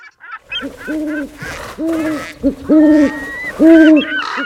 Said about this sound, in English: Through the hospital's narrow main corridor, you enter a cacophony of ever-demanding birds. Pelicans, ospreys, owls, hawks, all chirping, squawking, probably wondering, what the heck am I doing in here? All beaks are wide open, screaming, "Feed me!"